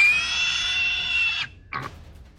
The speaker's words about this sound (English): I knew I had a pig sound somewhere.